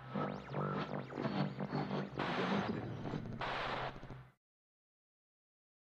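A chair is dragged out across the floor, a loud grinding scrape with wavering squeals that rise and fall for about four seconds before stopping abruptly into silence.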